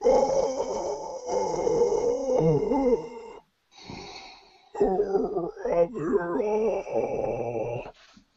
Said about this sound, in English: I look at Henri just listening to the roars kind of echoing